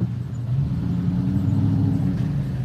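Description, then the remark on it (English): A truck's engine rumbles loudly and steadily, a deep low drone with a slight rise in pitch midway as it speeds along the Mexican side of the border wall. No voices are heard. “Here comes a truck again. Speeding along on the other side, the Mexican side.”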